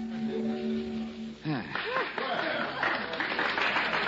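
An audience breaks into steady, dense applause after a brief held tone, with voices and a little laughter rising over the clapping until the end.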